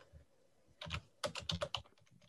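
Rapid bursts of clicky keystrokes on a computer keyboard, uneven in rhythm, with a couple of louder clusters and a few faint taps trailing off at the end.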